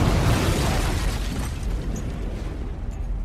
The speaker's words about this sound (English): Across the field from him, the LLRV dives into the ground and erupts in a giant fireball.